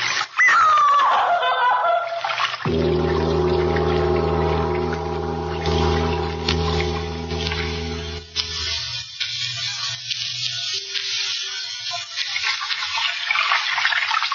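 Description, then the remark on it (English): Loud rushing water fills the scene, a strong flushing gush with a steady droning hum underneath that cuts off midway, leaving softer splashing and trickling afterward. “Sound of water so loud.”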